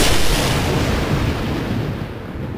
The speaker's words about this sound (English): Suddenly, there was the sound like a giant's bullwhip, accompanied by a blinding flash, and the smell of ozone filled the hallway.